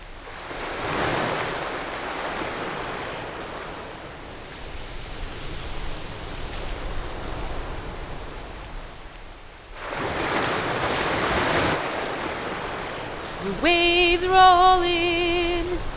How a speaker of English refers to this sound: Fishes swim as the waves roll in and the waves roll out. The waves roll in and the waves roll out.